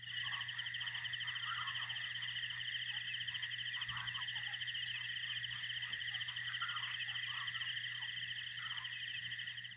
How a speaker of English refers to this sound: A listener suggested that I add some like crickets or nature sounds in the background of long pauses so that you guys would know that the audio hadn't dropped out. And so this is my first attempt.